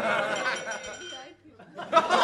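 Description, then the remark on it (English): Someone laughing with their whole body kicks their glass, which gives a short, bright clink over a busy background of chatter and laughter, followed by a brief lull and then more lively voices. “Somebody was like laughed with their whole body and kicked their glass.”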